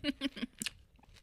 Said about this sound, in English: I hope you guys are enjoying the sound of us chewing.